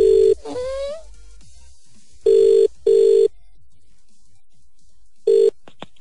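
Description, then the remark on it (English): An outgoing call rings on the line: steady, mid-pitched ringback tones come in a double burst with a pause between pairs, following a brief warbling chirp at the start. No one speaks. “Punching in the digits.”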